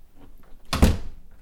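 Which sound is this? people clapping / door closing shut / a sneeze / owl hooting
door closing shut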